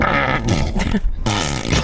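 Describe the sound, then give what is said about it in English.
A voice imitates a fart into a microphone with buzzing, sputtering lip noises in two bursts, low and raspy with wavering pitch, split by a brief gap near the middle. “You did a fart sound effect into the microphone while I was trying to make a great point about Dave Foley.”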